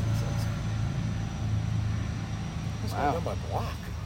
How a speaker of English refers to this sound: Helicopter. Wow, listen to that for the viewers. They have the light on. I think they're trying to spot someone.